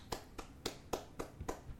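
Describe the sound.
One person claps on their own, six sharp claps at an even, unhurried pace. The claps sound fairly quiet, with no voices alongside.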